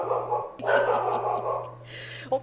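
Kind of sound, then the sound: animal, dog barking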